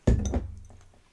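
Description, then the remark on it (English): Two quick clinks of glasses touching in a toast, a fairly dull knock followed by a second tap, with a faint ringing tail fading out. No one speaks. “Let us all cheers to this book finally being finished.”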